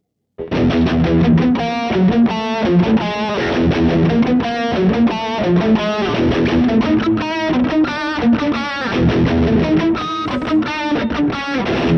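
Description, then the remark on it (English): A heavily distorted electric guitar plays a fast, driving metal riff with rapid, chugging rhythm, loud and unbroken for about twelve seconds after a brief silent start, with no voices. “There's another example that came to mind that I have to do within the same kind of trollish feel, and it goes like this.”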